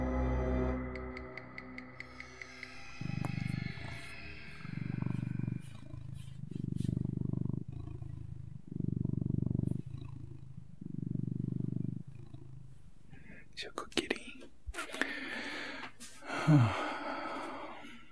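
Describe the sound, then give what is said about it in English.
A cat purrs in a steady, rumbling rhythm, about seven pulsing breaths in a row, before some brief shuffling and a faint voice near the end. “You do what you want to me, but you leave the kitty alone, okay?”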